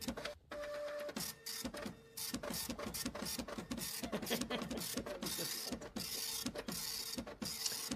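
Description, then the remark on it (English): A printer runs steadily, its mechanism whirring and clicking in a rapid, repetitive rhythm as the carriage moves back and forth, fairly loud with no voices. “I love how this is our viewer mail clip, even though I couldn't get the printer working earlier.”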